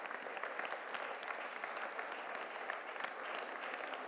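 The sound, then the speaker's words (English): An audience in an auditorium claps steadily throughout for the women called forward during a church service, a dense, even wash of many hands with no pauses and no talking over it. “Brothers, let us clap for them.”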